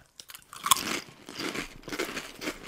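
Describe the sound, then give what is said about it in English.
Crunching of sour cream flavored potato chips: a sharp bite followed by a rapid series of crisp, crackly chews, fairly loud, with no talking. “Crunchy. That is crunchy. Definitely sour cream flavor.”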